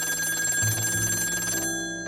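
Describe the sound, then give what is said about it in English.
A telephone rings late at night with a steady, high-pitched electronic tone over a low hum, its upper shimmer cutting off shortly before the end. No one speaks. “It was late when the dame called me.”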